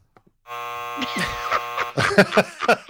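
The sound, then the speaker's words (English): A harsh, buzzing game show buzzer, hit by a player during a drinking game, blares abruptly and holds for over a second, rich in raspy overtones, while voices start talking over it and carry on after it cuts off. “Wait, every time he hits the buzzer, though, he takes a drink of his beer.”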